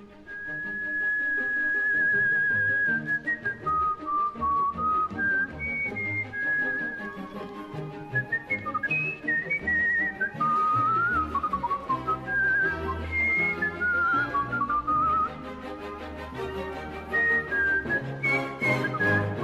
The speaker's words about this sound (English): In this scene, Walter, also known as the Whistling Caruso, steps in at the last moment to fill in for the missing climax of a theatrical performance with his tuneful operatic whistling.